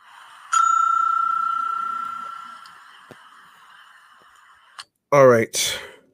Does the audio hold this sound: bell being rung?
yes